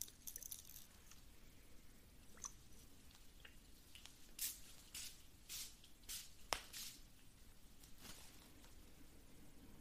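A heart chakra spray bottle mists in a series of short, hissy spritzes, several in quick succession, fairly soft against a quiet low background with no talking.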